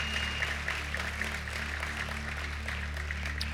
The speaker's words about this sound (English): Come on, give God a big clap and thank him.